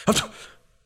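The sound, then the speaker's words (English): A voice imitates a creature's sneeze, set off by a spore going up its little nose: one short, sharp burst that is loud and breathy with a voiced edge, then trails off quickly into quiet. “Bless you. My spore goes up its little nose.”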